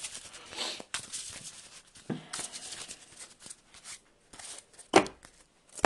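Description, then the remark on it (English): Crisp riffling and papery flicks of a card deck being shuffled during the setup of a card game, with bursts of rapid fluttering and soft taps, broken by brief pauses and a sharper slap near the end. “Get to search my discard pile. And deck for shield, put it in my hand, shuffle my deck. I'll shuffle my deck anyway.”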